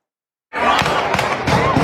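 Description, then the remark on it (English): Loud gunshots from an active shooter ring out on the campus of Virginia Commonwealth University in Richmond, just after a high school graduation: a rapid series of sharp cracks, about four in under two seconds, over a dense, chaotic wash of noise that starts abruptly after a brief silence. “Gunfire erupting on the campus of Virginia Commonwealth University, just moments after students from Richmond's Huguenot High School held their graduation.”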